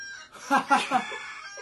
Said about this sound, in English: Yeah, turn off your phone, mate. That's a weird ringtone to have. It's not it's an alarm, see, hence the rooster. Ah. Oh, the real question is why I've got a wake up alarm at like 11:30.